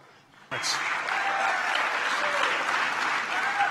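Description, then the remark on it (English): After a brief hush, a large crowd at a State of the City speech suddenly erupts into loud, sustained applause with a murmur of voices mixed in, reacting in surprise to a proposal to remove building height limits, holding steady until the end. “You can actually hear the surprise in the crowd's voice there.”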